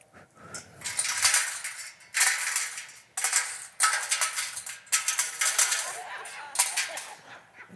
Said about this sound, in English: I could tell by the sound. Those were not little, those were big coins.